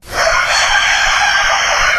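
A rooster crows loudly in one sustained, strained call with a harsh, bright tone that holds steady for about two seconds. No one speaks.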